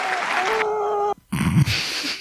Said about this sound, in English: Best Supporting Actor goes to Benicio Del Toro. Please clap. For Traffic.